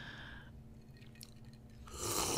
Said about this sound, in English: Oh. That was me nervously sipping my cocktail.